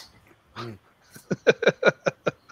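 A dog barks in a quick run of about seven short, sharp yaps, fairly loud, after a single lower bark or vocal sound just before.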